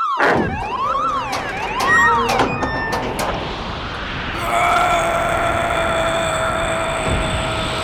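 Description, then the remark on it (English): A door alarm blares loudly, first with fast warbling electronic sweeps, then settling into a steady, piercing tone that continues without pause. “That's a door alarm.”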